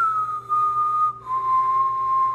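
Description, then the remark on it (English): A person whistles two long, steady notes, the first slightly higher, with a brief break between them. The tone is clear and sustained, with no talking. “He wouldn't even do songs. He would just whistle.”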